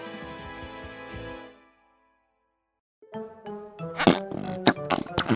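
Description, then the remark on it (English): A low, buzzy, farting squelch from fart putty trails off into a pause, then a quick series of wet, squishy pops and sharp squelching bursts follows, loud and irregular, with no talking. “You have to carry that fart putty everywhere you go.”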